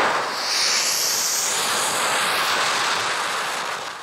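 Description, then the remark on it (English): Tear gas canisters, recorded in Colorado shortly after 9/11, hiss out a loud, steady rushing whoosh, with a high airy whistle that sweeps and wavers over the noise before fading slightly at the end. No voices. “The sounds of tear gas canisters shortly after 9/11, near you.”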